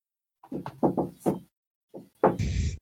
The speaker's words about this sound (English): That was very distracting. What was that? I just heard a shave and a haircut knock. Like, oh. Somebody did the shave and the haircut. Like, I heard it somewhere, someone. I don't know who.